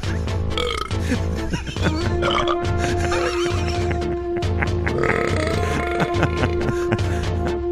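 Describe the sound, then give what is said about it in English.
A long, loud belch rumbles, drawn out over several seconds with a steady low drone and gurgling, croaky texture, with no talking over it. “Oh, that was a real live belch that you just popped in there.”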